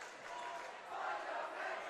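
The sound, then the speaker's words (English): The Zeeland West student section at a basketball game chants the fundamentals cheer in unison, a steady, loud wash of many voices rising slightly in the second half, with faint gym noise beneath. “And the Zeeland West students return the fundamentals cheer.”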